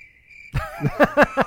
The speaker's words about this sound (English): I'll insert crickets right, there.